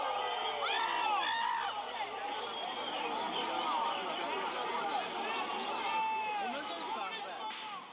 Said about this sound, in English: And then you start running. And there are people who are cheering.